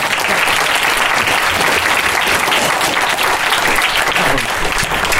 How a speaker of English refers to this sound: Well, what a great way to end. And I think we will end there with a spontaneous round of applause.